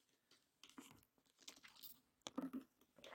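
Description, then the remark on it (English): Mouth sounds of someone sipping a Red Bull energy drink: soft slurps and wet clicks, then a couple of louder gulping swallows near the end, with no talking. “I'm about to take a sip of this.”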